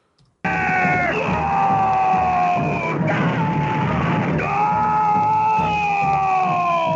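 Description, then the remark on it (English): A long, loud guttural scream from the cartoon character Dr. Mindbender bursts in abruptly and holds for several seconds without a break, its strained, rough voice wavering slightly in pitch as it keeps going. “Mindbender has ever said has been a guttural scream of some kind.”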